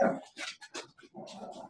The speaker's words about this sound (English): Yeah, my dogs are about to get loud, by the way.